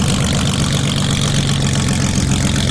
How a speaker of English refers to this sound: The sea sled can hit a speed of over 40 knots because they're equipped with, you guessed it, airplane engines. These boats speed across the Seattle waters with deafening noise.